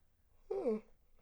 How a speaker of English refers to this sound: Sorry for the yawning.